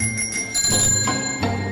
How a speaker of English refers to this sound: All right. It's time for Overrated, Underrated. Where's my bell?